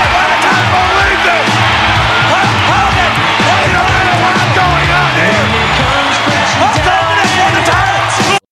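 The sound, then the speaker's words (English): A big WWF wrestling arena crowd roars and cheers without letup during a match involving Hulk Hogan, Yokozuna and Mr. Fuji, dense and loud, with individual shouts and whoops rising above the din before it cuts off abruptly. “The crowd wants it to go for it, but then Fuji reaching back into his kimono there.”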